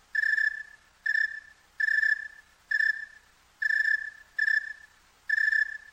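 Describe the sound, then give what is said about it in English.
A cricket chirps slowly and steadily on a cool night, seven evenly spaced, shrill trills of about half a second each, clear with no other sounds or voices around them. “Now that's a cricket on a cold night or a cool night. Rather slow.”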